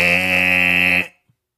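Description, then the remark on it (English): A voice imitates a timer buzzer with one loud, harsh, steady buzz held for about a second, then cut off abruptly into silence. “Are we doing mouth timers?”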